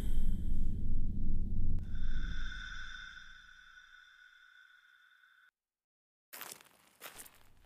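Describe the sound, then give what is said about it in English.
Crunching footsteps in a cave land in a steady rhythm of about five heavy steps, then fade under a sustained high droning tone; after a brief silence, two short gritty crunches follow. “Samson's crunching footsteps were louder than any other sound in the cave”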